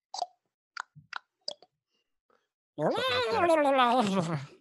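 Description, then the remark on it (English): A voice imitates the clicking noise of the aliens in the film Signs: four sharp, dry mouth clicks at uneven intervals, then a loud, sustained warbling vocal sound whose pitch wobbles and slowly drops. “I'm trying to do the clicking noise they make in signs.”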